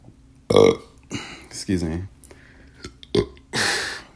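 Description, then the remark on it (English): A loud, drawn-out burp rumbles, with several shorter belching bursts and guttural croaks following in an uneven rhythm over about four seconds. “You know, everybody burps.”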